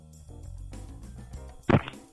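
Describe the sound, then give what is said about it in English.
A single sharp slap of a phone against skin, loud and brief, standing out over a low murmur of background noise. “Use your phone. Slap your ass with your phone.”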